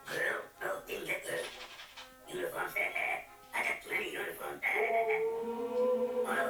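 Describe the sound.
A voice imitates a big dog, with a few short barking yelps followed by a long, drawn-out howl that rises and holds near the end, fairly loud.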